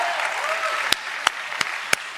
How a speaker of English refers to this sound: Come on, clap your hand. Clap your hand.